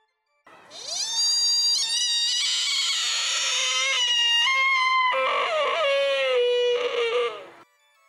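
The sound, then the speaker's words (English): A buck deer in the autumn mating season lets out a single long, piercing, mournful cry, high and wavering, lasting about seven seconds with a brief drop and quaver in pitch partway through, heard alone. “Autumn is mating season, and through the woods and forest echoes the eerie cry of the lonely, longing buck.”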